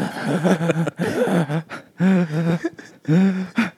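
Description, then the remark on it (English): A person vocally imitates panting they did earlier, making four or five rhythmic, voiced gasping breaths that sound like inward, sucking sobs, fairly loud, with brief pauses between them. “What did the panting sound like?”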